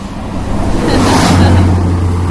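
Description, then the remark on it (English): A big truck rumbles past on a roadside in Morocco in fairly cold weather, a loud, steady low engine drone with broad road noise swelling slightly as it passes. No one speaks. “And you'll find that the interview starts, as with many of our interviews, with a big truck rumbling past.”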